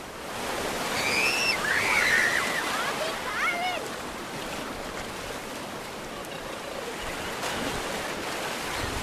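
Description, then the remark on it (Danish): Steady rushing surf of sea waves washing onto a beach under a shining sun, a broad continuous roar with gentle swells, while a few birds chirp and call faintly in the first seconds. “Solen står lige ned på vandet, og bølgerne bruser, og havet er blåt.”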